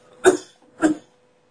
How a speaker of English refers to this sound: Dying. Okay. I'm good. I should take that sip of water that I just coughed up.